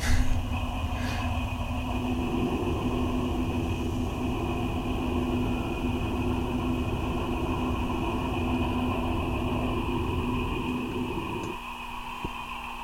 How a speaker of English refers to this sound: Now I'll open the airlock door.